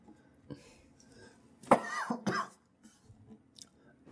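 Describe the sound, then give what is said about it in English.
A loud cough into the microphone bursts out twice in quick succession, harsh and throaty, followed by a brief throat-clearing sound against a quiet background. “Don't cough into the mic.”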